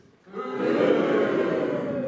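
A crowd boos together to vote that the Loomscape should go into Droom 101, in a sustained, low, droning chorus that swells in after a brief quiet moment and holds steady and loud to the end.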